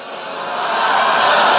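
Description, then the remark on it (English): A crowd at an event in Florida boos in a continuous, dense wash of voices that swells steadily louder over about a second and a half, with no single speaker standing out. “Booing gets you nowhere.”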